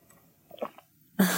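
Someone takes a quick sip of water, soft slurping and mouth noises, followed by a sudden louder breathy exhale. No one speaks.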